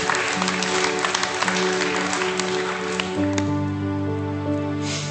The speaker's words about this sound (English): Give the Lord a clap. Amen.